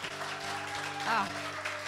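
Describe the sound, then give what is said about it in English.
A crowd applauds in a steady, dense wash of clapping for about two seconds, with a low hum underneath and a brief voice-like swell midway. “Another round of applause for her, y'all.”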